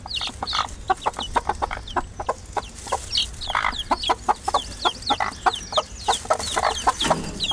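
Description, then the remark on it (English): Many young Australorp Sussex cross chickens cluck steadily inside a chicken ark, short overlapping calls coming in quick irregular bursts with occasional louder squawks, no voices. “What we thought we'd do with these chickens, I'll keep a couple of these because they're crosses between, they're an Australorp Sussex cross.”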